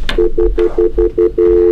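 phone keypad dialing tones

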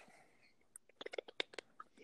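sipping a drink

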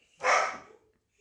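dogs barking

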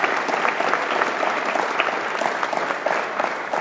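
audience applause

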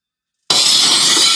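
window glass shattering

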